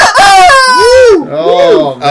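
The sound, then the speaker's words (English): A loud chicken squawk: two drawn-out, wavering cries that rise and fall in pitch, one right after the other, with nothing else heard around them. “Give me that chicken.”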